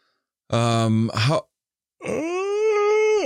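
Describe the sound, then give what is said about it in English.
A big, loud human yawn: a short groaning breath, a brief pause, then a long drawn-out voiced moan that rises and holds steady before cutting off. “Big yawn. I haven't had a big yawn like that in some time.”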